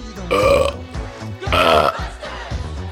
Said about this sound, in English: Oh, that took all, the belching took it all out of me,